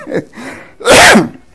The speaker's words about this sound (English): I keep trying to cough. I'm trying to hold it back.